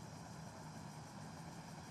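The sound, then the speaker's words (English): A car engine rumbles steadily at a low, even idle, a continuous hum with no change in pitch or loudness, fairly quiet and with no voices. “This car's coming through here.”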